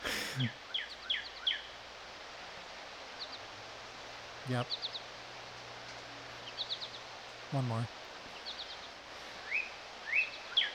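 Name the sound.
bird singing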